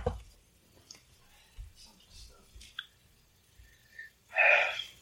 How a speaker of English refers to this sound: I'll be right back. I think I'm gonna go blow my nose, I think.